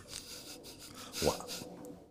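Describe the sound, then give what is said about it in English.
A quiet toilet flush: a rough, hissing rush of water that swells to a peak partway through, then tapers into a gurgling trickle. “That was another flush.”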